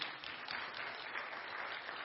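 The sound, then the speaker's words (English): A crowd applauds steadily one morning to welcome guests, a dense wash of overlapping claps sustained at an even, fairly loud level throughout with no voices rising above it. “Go ahead. You can clap.”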